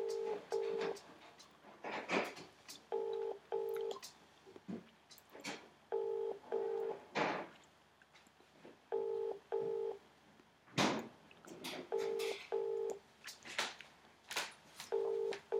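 A phone's ringback tone on an outgoing call repeats steadily in double pulses, brr-brr then a pause, about every three seconds, over faint background clicks and rustle.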